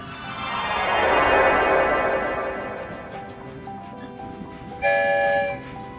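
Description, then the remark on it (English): A train rushes through a short tunnel, its rumble swelling loudly and then fading, followed near the end by a short, bright horn toot. No one speaks. “Keep all the story train windows rolled up”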